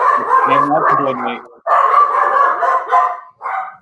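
Several dogs bark and yap loudly, their overlapping barks forming a near-continuous clamor with a brief pause before a final burst.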